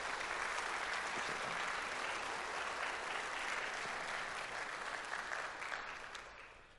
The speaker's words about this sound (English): Would you give Andrew a round of applause? Yeah.